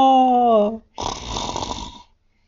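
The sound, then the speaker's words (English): A voice imitates snoring: a short, falling voiced groan, a brief pause, then one long, rough, rattling snort-like inhale lasting about a second. “Snork, snork, snork, snork.”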